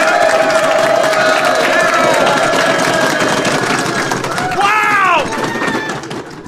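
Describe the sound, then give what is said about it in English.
A live audience in Los Angeles, California, at a .NET Rocks show taping, jokingly said to number 400,000, cheers and applauds loudly and steadily, a dense roar of clapping with whoops and shouted voices rising above it, including a rising cry near the end before the noise eases slightly. “Who knew Los Angeles was so rambunctious?”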